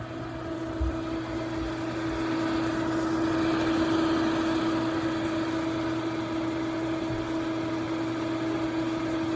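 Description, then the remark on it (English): Computer fans spin hard under load, a loud, steady whooshing roar with a constant mid-pitched hum running through it, holding unchanged for the whole stretch with no voices. “That thing is screaming. Like, you could barely talk over it if you're in the same room.”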